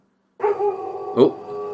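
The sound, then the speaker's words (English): A male pet dog vocalizes loudly with no talking: a drawn-out, whiny bark that holds for nearly a second, then a sharper single bark before the sound trails on. “My dog, I can't control it.”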